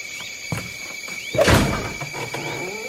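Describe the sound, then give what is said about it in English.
A stuck heavy door, bolted on this side, is forced open with a loud scraping thunk and a burst of grinding noise, preceded by a few dull knocks and faint high squeaks over a steady background hum. “Damn door's stuck.”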